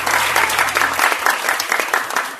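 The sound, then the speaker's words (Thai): An audience at a Podtalk live event applauds the Widcast show, a dense wash of many hands clapping at a fairly loud, even level with no voices on top, and a low hum fades out partway through. “และนี่ก็คือเสียงที่อัดมาจากวันงานพอดทอล์กครับเชิญไปรับฟังครับ ปรบมือให้วิดแคสครับผม”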